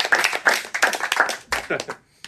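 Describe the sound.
A few people clap together in a quick, steady rhythm, loud sharp slaps mixed with voices cheering over them, then the clapping loosens and trails off into scattered claps.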